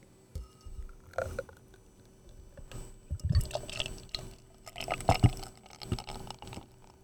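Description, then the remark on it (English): Guinness stout poured into a pint glass, foaming as it goes, with irregular gurgling glugs and splashes that swell and ebb over several seconds before trailing off; no one speaks. “Let's listen to the pour. Can we hear the pour?”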